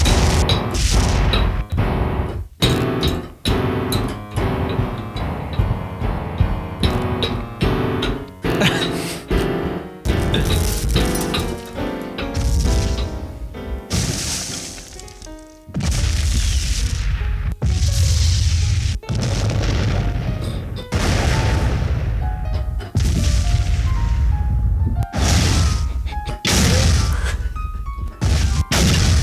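Loud explosion sound effects boom and crash repeatedly for about half a minute, with rumbling blasts and smashing debris following one another closely, and no one speaking.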